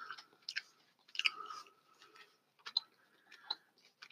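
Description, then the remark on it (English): Wet chewing sounds of someone chewing a birthday-cake-flavored candy, with irregular crunchy clicks and smacks repeating over several seconds, quiet and intimate, with no one speaking. “Wow, you're chewing for a long time, pal.”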